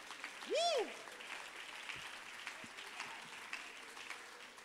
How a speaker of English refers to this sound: Oh, clap your hands unto the Lord and magnify him.